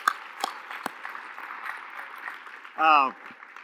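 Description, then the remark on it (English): An audience claps in a steady, moderate wash of applause with a few sharper individual claps standing out, and a brief rising voice cuts through near the end. “Yeah, we can clap.”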